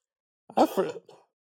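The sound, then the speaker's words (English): A man coughs, a short raspy burst of two or three harsh pulses that trails off into a brief breathy rasp, with silence around it. “It entered …. He's coughing.”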